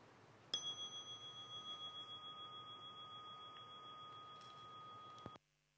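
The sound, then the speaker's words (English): A single meditation chime is struck once at the end of a dream yoga practice session and rings out alone, its bright, pure tone shimmering and slowly fading for about five seconds before cutting off abruptly. “So, I'll let the for the recording, I'll let the chime go, and then I'll turn this off, okay?”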